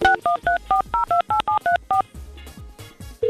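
telephone keypad dialing tones

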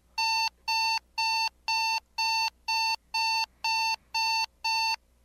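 alarm clock ringing

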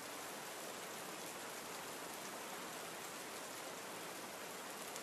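rainfall

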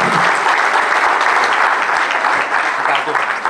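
audience applause

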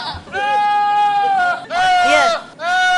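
goat bleating

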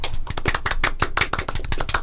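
golf clap

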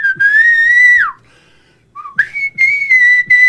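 loud human whistling

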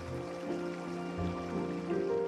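flowing creek water

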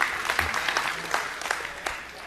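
audience applause

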